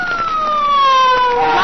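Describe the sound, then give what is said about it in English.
A police car siren wails loudly, its steady tone sliding slowly downward in pitch as it winds down, like a car pulling up and stopping. “it's Faraday in that police car.”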